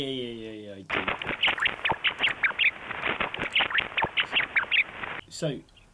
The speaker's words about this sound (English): Right, that's at 50 kilohertz. Anyway, what you can do is you can record that just with a microphone, and then you can reduce the frequency so you can hear it. Yeah. Do you want to hear a rat being tickled?